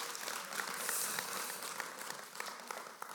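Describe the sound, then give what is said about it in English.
An audience clapping: a dense, steady patter of many hands with scattered sharper claps, fairly soft throughout and with no talking over it. “Yeah, you can clap.”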